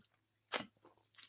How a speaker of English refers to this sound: Excuse me while I take a quick sip.